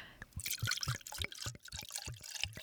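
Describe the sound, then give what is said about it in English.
Wine poured steadily into a glass in a heavy pour, with a run of quick gurgling glugs and splashy trickling over about two and a half seconds, no talking over it. “Ooh, heavy pour.”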